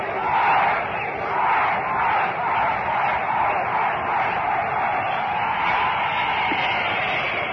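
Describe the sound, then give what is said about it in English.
A large football crowd in the center field bleachers of the Polo Grounds cheers and chants together, led in a cheer by a man in deep center field, in steady, swelling rhythmic waves, loud and continuous, with a roaring wash of many voices throughout. “he realized that and went out there in a deep center field to lead the bleachers into a cheer.”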